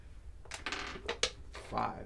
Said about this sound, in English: I'm going to roll this dice for Reggie.